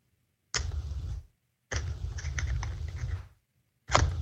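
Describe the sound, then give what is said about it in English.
Computer mouse clicks starting a screen recording in OBS Studio come in three bursts of rapid tapping, separated by short pauses, with a low rumble underneath and no one speaking. “Let me hit this OBS studio. We're going to get it recording.”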